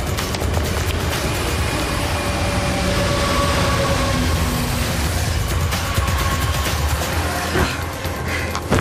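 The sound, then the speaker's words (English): A metro train roars through a tunnel, a loud, steady rumble and rushing hiss that fills the whole stretch, with faint rattles and clanks near the end. “No more tests in metro tunnels, please.”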